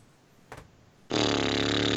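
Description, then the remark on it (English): A person mimics a vacuum cleaner with the mouth: a short breathy puff, then a loud, steady, buzzing whir that starts abruptly and holds without letup to the end. “That was a good vacuum impression.”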